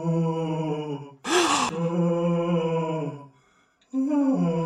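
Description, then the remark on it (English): Long, sustained eerie moans at the Playboy Mansion with a steady low pitch, broken early by a harsh breathy burst. The wail drones on, falls silent briefly, then rises again at the end. “Listen to this eerie moaning.”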